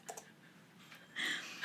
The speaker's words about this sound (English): She's typing.